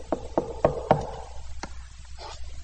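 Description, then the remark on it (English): Four quick, evenly spaced knocks on a door, fairly loud, then one softer knock after a short pause, with a faint hiss behind and no voices. “God lays on our heart to go knock on the door and witness to somebody.”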